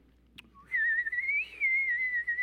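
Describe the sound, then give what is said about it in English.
In a church, a person whistles a steady, high warbling tone that wavers gently up and down, imitating birds singing, after a brief click. “The birdies are singing.”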